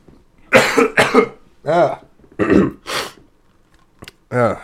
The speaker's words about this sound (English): My gosh, I gotta do another cough. I'm so sorry. I'm so sorry, people. I'll do it away from the mic, okay?